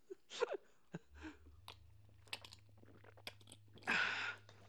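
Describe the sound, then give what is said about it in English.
Wet gulping and swallowing sounds with small mouth clicks as people sip drinks in a toast, scattered over a few seconds, ending in a loud breathy exhale, with a faint low hum underneath and no talking. “Edit out the sound of us swallowing because it's right. weird.”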